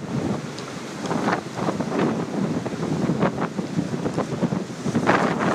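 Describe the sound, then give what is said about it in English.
Steady wind outdoors in a neighborhood buffets the microphone in loud, rumbling gusts, with brief crackling bursts over a broad roar, continuing throughout and no one speaking. “Is this too windy for you?”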